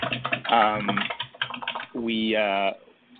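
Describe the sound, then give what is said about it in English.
Rapid computer keyboard typing rattles along in the background, partly buried under muffled voice-like sounds and a sustained tonal hum near the end. “Actually, your typing, I think, is quite loud in the background there.”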